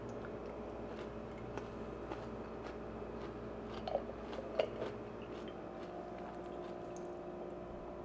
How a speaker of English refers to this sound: The crunch of just a beautiful pickle chip. Now, this jar was purchased last night.